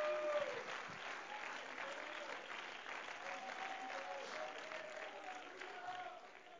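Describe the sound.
An audience claps together in steady, continuous applause to praise the Lord during worship, holding at an even level for several seconds, with indistinct voices faintly mixed into the dense clatter of hands.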